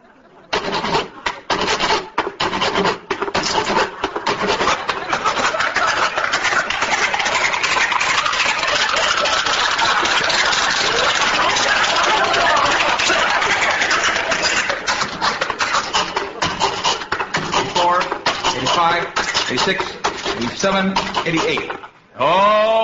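A long strip of ivory-covered wood being sawed into 88 little pieces: a loud, buzzing rasp that runs steadily for about twenty seconds, with a slightly pulsing rhythm, before cutting off abruptly near the end.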